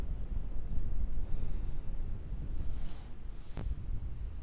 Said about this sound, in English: Is this goddamn mic picking up the fucking rain? Yes, I'm pretty sure it is, bro.